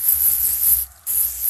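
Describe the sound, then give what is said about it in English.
Lysol disinfectant aerosol spray hisses in a steady, bright burst as it is sprayed on everything, stops for a split second, then hisses again. The sound is loud and sharp, with no voices. “spray the Lysol on everything.”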